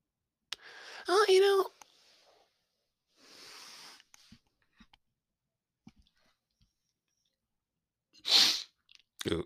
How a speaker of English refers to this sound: Sorry, almost sneezed.